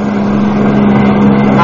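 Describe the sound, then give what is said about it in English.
A car engine roars at high speed as the car tries to crowd a trailer off the turnpike, a loud, steady drone with a sustained low hum that holds without letup for the whole moment, powerful. “Trying to crowd a trailer off the pike?”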